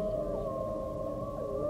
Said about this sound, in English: Howls come from the old oak trees, just past a creek.